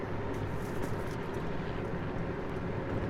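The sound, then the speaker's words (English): A helicopter drones overhead in a steady, continuous rumble that holds at an even, fairly loud level throughout, with a dense low roar and no speech. “Do you see that helicopter?”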